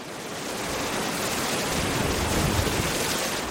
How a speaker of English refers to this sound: October 19th. Winds have begun gusting to 60 miles an hour. People are hauling boats inland and moving their meat drying racks. Shishmaref is bracing for another fall storm.